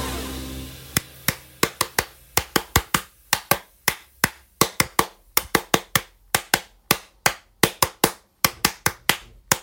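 Sharp, crisp hand claps, a few dozen of them in an uneven, loose rhythm, each ringing out briefly. It sounds like one or a few people applauding, with no voices.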